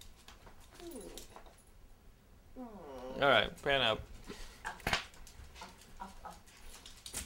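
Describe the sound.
A dog lets out a couple of high, drawn-out whimpering whines, with softer panting breaths around them, while people talk before and after.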